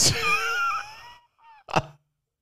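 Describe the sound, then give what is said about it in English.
A chicken in a film scene squawks loudly, one drawn-out strained cry followed by a brief pause, a softer short call, and a final sharp burst. “I was actually pulling up the chicken scene from Rocky.”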